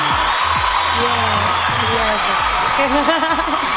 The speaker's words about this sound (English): The crowd's going crazy.